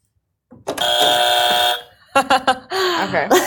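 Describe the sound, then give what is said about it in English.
A loud, harsh buzzer, used for answers in a quick game of hot or not, blares once for about a second, a steady rasping tone, followed by a quick burst of voices. “If it's not, you get to use our annoying morning buzzer.”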